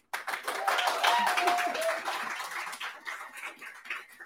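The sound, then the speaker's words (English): A class in the Business Bros classroom bursts into applause for a guest coach, many hands clapping in a dense, steady patter that starts abruptly and gradually thins out, with a faint whistle or cheer mixed in early. “the class, clap it up one more time for her.”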